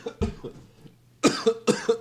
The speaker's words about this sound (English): Making me cough.